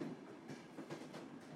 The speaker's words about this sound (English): With every soft chug of the train, he had felt farther and farther from his cares, increasingly remote and more deeply nestled into the wild and free Scottish countryside.